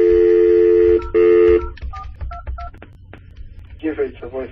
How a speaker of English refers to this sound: So if I dial my phone number again, I should just go straight to my voicemail, because this phone number that I'm calling from is not in my do not disturb favorite contacts. So I'll make a phone call again.